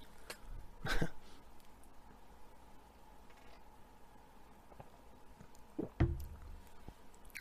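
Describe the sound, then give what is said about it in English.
Two gulps into a microphone, each a short, muffled low thump with a wet click, about five seconds apart, with only faint background hiss between them and no talking. “Just gulped in the mic.”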